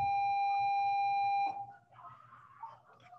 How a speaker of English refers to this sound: Sorry, that was just the bell. I'm still at school.